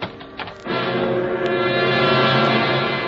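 A deep, sustained ship horn blasts steadily as the ship starts moving out of its berth, after a brief rumbling start, holding one low, harmonically rich tone at full loudness to the end, with no voices.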